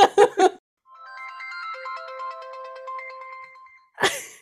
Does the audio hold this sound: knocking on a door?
no